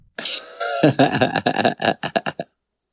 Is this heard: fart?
yes